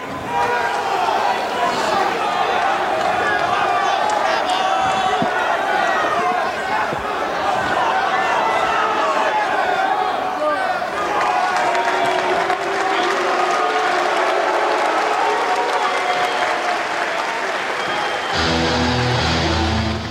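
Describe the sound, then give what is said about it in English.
A large wrestling crowd boos loudly and steadily for about twenty seconds as wrestlers Taz and Sabu shake hands, a dense, continuous roar of many voices with no single speaker standing out, shifting in texture just before the end. “Booing the good sportsmanship.”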